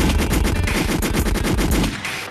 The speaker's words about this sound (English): Should I play the gunshots now or later? All throughout.